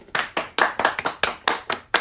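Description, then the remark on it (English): Hands clap in a round of applause for a guest, a steady, even rhythm of about nine sharp claps in quick succession, fairly loud, with no voices over them. “Yeah, round of applause for”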